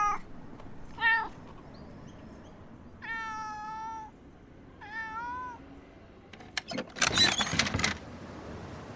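A cat meows several times in short, separate calls, some drawn out and wavering. A brief burst of harsh, noisy rustling follows near the end.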